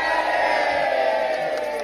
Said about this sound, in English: Give us a cheer, everyone.